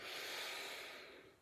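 A single long, steady inhalation through the nose, fairly loud, a breathy hiss that holds for over a second before tapering off, with no talking, taken while counting breaths.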